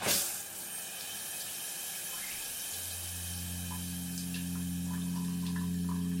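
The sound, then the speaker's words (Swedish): Steady shower water runs with a continuous hiss from start to finish while a person stands in the shower, and a low droning hum joins partway through, like pipes or a pump under the spray. No one speaks. “Du står i duschen och väntar ut tiden.”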